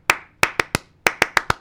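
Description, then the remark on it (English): A rhythmic school clap pattern, based on the AAPT Smart Chat ad tune, of eight sharp, crisp hand claps: one clap, a short pause, three quick claps, then four evenly spaced claps, with no talking. “I'm just trying to find who it was that invented that, but it was pretty much the AAPT Smart Chat clap.”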